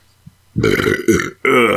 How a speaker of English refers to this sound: Chili burp.